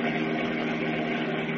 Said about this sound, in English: And as we continue now, they are speeding along a country highway in their powerful Batmobile. Listen.